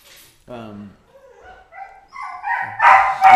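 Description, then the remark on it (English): A dog whines and yelps excitedly because it is about to go for a walk: a short yelp, then a string of high, wavering whines that build into loud, frantic barking at the end. “Every time he gets to go for a walk, he acts like he's being killed.”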